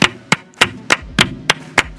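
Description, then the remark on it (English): Hands clap in a steady, even rhythm, about seven sharp, crisp claps over two seconds, each one loud and snappy with no one talking. The clapping is a guard of honor welcoming a guest. “So what you will just hear is us clapping for our guest.”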